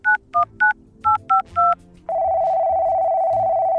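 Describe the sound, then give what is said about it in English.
A voice-activated satellite phone built into a dog's collar dials 443566 with six crisp keypad beeps in two quick bursts of three, followed by a loud, steady tone of the line ringing, clear with no talking. “Activate sat phone. Dial 443566.”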